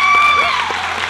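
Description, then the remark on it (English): A crowd applauds to honor a woman, with dense, steady clapping that stays loud throughout, with a few faint voices and a brief whistle-like tone mixed in. “Can you give her a hand clap?”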